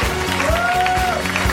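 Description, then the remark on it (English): An audience at a Harmontown show claps steadily throughout, a dense, continuous wash of applause, with a faint sustained tone and soft rhythmic thumps running underneath. “We keep clapping!”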